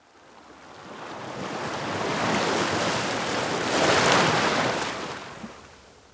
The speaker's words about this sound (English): Have you heard of the term the surf zone? It's the place where ocean waves crash onto the shore.